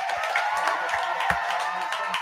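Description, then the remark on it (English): Steady applause from a group for a celebrity guest, a dense hiss of many overlapping claps at an even loudness throughout, with a few sharper individual claps standing out. No one speaks. “So round of applause to you, man.”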